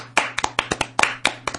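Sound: round of applause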